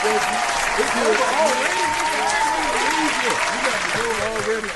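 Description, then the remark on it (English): An audience applauds steadily and densely for several seconds, a loud continuous wash of clapping with voices calling out and chattering underneath. “We gotta clap it up again for you.”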